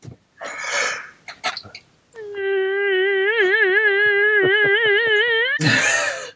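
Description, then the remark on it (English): A drawn-out vocal yawn: breathy inhales, then a loud, sustained, wavering voiced tone lasting about three seconds, ending in a rough, breathy exhale. No talking. “Who was yawning? I was.”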